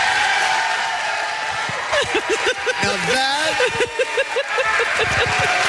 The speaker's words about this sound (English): that is the only successful slow clap I've ever seen work. It worked. Like in real time.